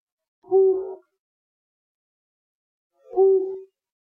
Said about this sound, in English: Flammulated owl. You didn't even hear half the hoot before you answered.